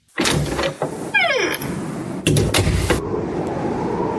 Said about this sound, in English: We opened the door.